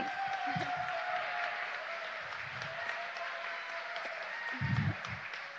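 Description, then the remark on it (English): An audience applauds the speaker's family at a community event, a dense, even wash of many hands clapping that holds at a constant level throughout, with a few brief low murmurs underneath. “Thank you for applauding my family.”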